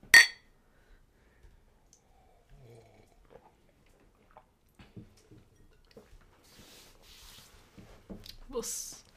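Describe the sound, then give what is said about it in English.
A single sharp, loud clink of cups knocking together in a toast right at the start, followed by quiet clattering, sipping and handling sounds with faint murmuring voices. “So, here's to you, Kevin. Cheers.”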